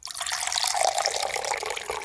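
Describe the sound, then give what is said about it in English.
Water is poured steadily into a glass, a bright continuous splashing stream heard for about two seconds, with no talking. “Sound number two was water being poured into a glass.”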